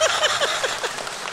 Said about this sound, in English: Thank you for the jaded applause. Thank you. Everybody sit down.